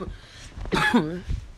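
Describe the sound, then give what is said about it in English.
A single fairly loud cough bursts out, rough and raspy with a brief voiced tail, set against a quiet background with faint low rumble before and after. “And I'm coughing because I'm not sick.”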